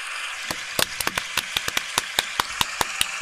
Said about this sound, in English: Yeah, we'll give them a longer clap. So thank you, guys.